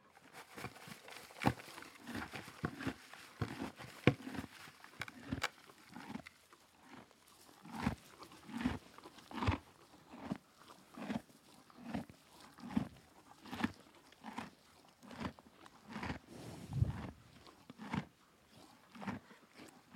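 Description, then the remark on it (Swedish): A female horse named Meg, with young, healthy teeth, chews feed with steady, rhythmic crunching bursts roughly every half second to second, grinding on and on with no voices present. “Meg har en bra tuggteknik. Hon har också unga, friska tänder.”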